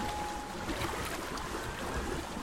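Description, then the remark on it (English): Water sloshes and swirls steadily, with a few soft splashes as a kayak paddle dips in and the kayak glides along. No voices. “And this weekend, I'm going kayaking.”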